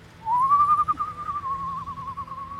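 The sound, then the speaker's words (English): A person whistles one long, wavering note from a darkened alley, sliding up at the start and holding steady for a couple of seconds, heard clearly over a low background rumble. “Stop whistling!”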